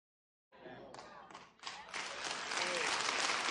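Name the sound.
applause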